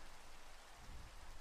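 Steady rain falls in a dense, even hiss spread across the whole range, with a faint low rumble swelling briefly midway through. No one speaks.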